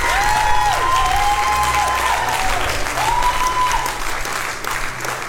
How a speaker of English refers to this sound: Give God a hand clap for the man of God, a man of integrity.